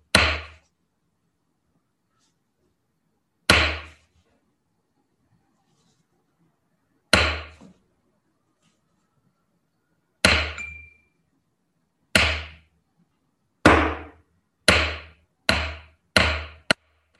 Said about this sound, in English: It's how they called people to practice. And they had a big wooden plate of wood, and they would bang on it, and they would hit the wood like this.